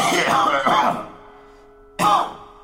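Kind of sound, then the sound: human body sound, man coughing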